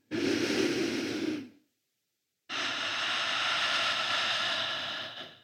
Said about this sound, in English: So in two, we're going to take an inhale and exhale together, and we'll do that two times. One, two.